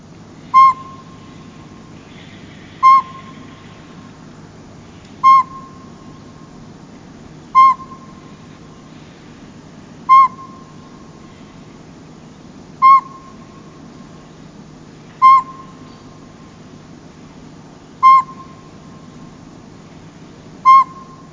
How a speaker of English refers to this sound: The northern pygmy owl can sometimes be heard during the day. Their song is monotonous, repeated, single toots.